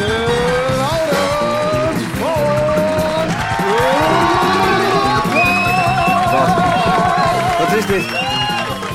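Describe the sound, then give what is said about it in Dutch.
A loud, dense audience at a live show cheers and applauds a contestant without pause, with shrill whistles and rising whoops sliding over the steady roar of clapping. “Geef hem een donderend applaus!”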